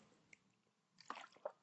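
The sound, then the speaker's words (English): A quiet sip of water: a brief wet slurp followed by a soft gulping swallow, with no talking. “Tasty water.”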